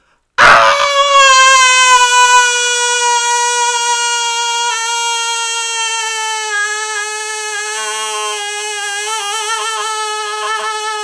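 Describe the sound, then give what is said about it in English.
A human voice imitates a fairy creature's scream of shock and terror: one loud, piercing wail that starts abruptly and is held at a steady high pitch for about ten seconds, easing slightly toward the end. “He charged at the creature with a great war cry, and the creature, looking towards him in shock and terror, let out a great scream.”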